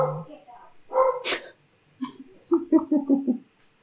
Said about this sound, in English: Sorry, the dog's barking.